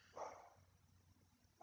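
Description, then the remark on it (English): A pet dog named Lucy barks twice, one sharp bark near the start and another cut off at the very end, with a quiet pause between and no talking. “Still going. Still barking on her.”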